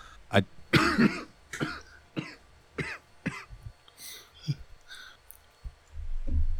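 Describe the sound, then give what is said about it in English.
A run of sharp coughs in quick succession, harsh and sputtering from someone who choked on spit, followed by a few quieter throat-clearing hacks and a breathy exhale at the end. “Ooh, choked on some spit there.”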